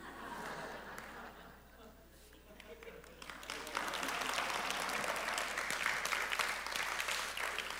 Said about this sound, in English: You know, and I know that that's worth an applause, because you are either married or you know how hard marriage is from the outside looking in, and you know a decade of marriage ain't no short time.